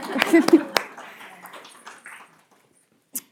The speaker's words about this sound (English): Can I get a round of applause for my 10?